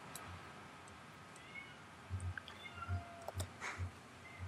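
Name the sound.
cat meowing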